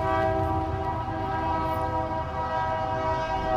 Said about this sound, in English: I got a train going by here. Sorry. We'll wait for that train